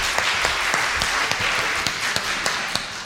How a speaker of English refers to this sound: Right, should we give them a clap? They did a great job.